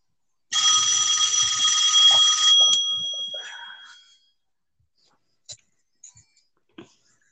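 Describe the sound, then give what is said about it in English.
A left-behind phone rings loudly with a bright, buzzing electronic tone for about two seconds as its owner calls it to find it, then fades out, followed by a few faint clicks and taps. “That's why she's calling it.”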